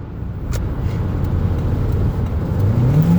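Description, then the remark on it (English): A steady car engine rumble with road noise as the car drives in the fast lane, its pitch climbing near the end as the vehicle speeds up. No voices are heard. “We're in the fast lane. Why are we going slow?”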